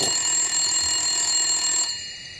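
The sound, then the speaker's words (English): A telephone in a kitchen rings with a bright, steady electronic tone that holds for about two seconds, then fades out. No voices are heard. “Everybody's just eerily quiet, and everybody's just sitting and listening to the phone ring.”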